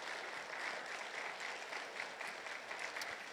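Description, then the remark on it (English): A church audience applauds steadily to welcome a newly signed youth intern, a dense wash of many hands clapping at an even level throughout, with no voices rising above it. “So let's give a round of applause for”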